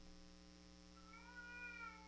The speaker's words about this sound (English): Is that Marie? Or I think that's Frank. Hold on. I'm assuming you guys can hear a cat wailing in the back. I think that's cute.